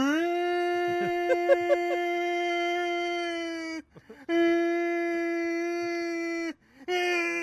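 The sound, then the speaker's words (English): A voice imitates a tornado siren with a loud, steady, buzzy wail held for several seconds, broken by two brief breath gaps before each new long, droning tone. “Let's do a tornado siren.”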